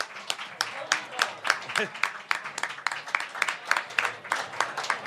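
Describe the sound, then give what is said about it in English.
An audience applauds steadily for several seconds as a guest from a punk rock band makes his way up to the stage, many hands clapping in a dense, crackly patter of fairly even loudness, with a few voices faintly mixed in underneath. “We give him a round of applause.”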